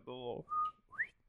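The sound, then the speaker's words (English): A person whistles an imitation of a bobwhite quail call, a steady note followed by a sharply rising whistle, fairly loud, just after a brief voiced sound. “You can whistle at those guys and they'll whistle back at you.”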